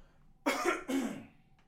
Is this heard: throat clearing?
yes